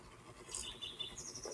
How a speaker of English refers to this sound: Beautiful rain-washed morning here in Santa Fe. The birds are singing. Right on cue.